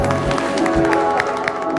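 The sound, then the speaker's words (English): A church audience claps together in a dense, steady wash of handclaps, with individual sharp claps poking through at a regular rhythm. The clapping sounds full and reverberant, with faint voices mixed underneath. “Come on, let's clap together.”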